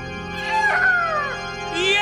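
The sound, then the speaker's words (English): A shrill, drawn-out eagle cry in the night sky with wavering, sliding pitch, rising and falling over about two seconds, then a second short screech begins at the end. No one speaks. “And what's that in the night sky? I do believe I hear again an eagle!”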